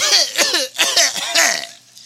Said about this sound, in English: … looks at Jennifer and just coughs.